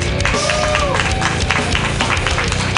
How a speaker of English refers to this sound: That's some good clapping.